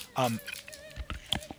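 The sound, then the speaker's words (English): A short voiced sound is followed by several quick, crackly bursts, a Smarties candy wrapper crinkling right in the microphone and the candy being crunched in irregular, moderately loud snaps. “I'm also going to eat one of these Smarties candies so I can crinkle that paper right in the microphone there.”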